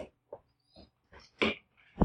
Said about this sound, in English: I'm just about to walk in. You guys want to hear the dogs? The dogs are going to bark like crazy when I walk in.